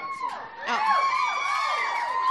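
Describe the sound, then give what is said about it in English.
A live audience cheers and whoops loudly, a dense wash of many voices rising sharply after the first half second and holding steady, with scattered high shouts on top. “This is a great crowd, by the way.”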